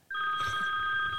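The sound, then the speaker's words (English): A phone rings with an incoming call from an unknown caller, a steady electronic tone with a bright buzzing warble that starts abruptly and sounds continuously at a fairly loud level, with no voices over it. “Unknown caller. What's this? That's me. Oh. Sorry.”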